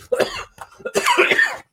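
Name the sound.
coughing fit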